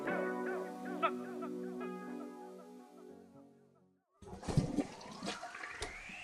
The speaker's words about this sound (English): What are you putting in your water bottle? I'm concocting an experiment. Yeah? On the potty. That's interesting. What is it? Liquid IV.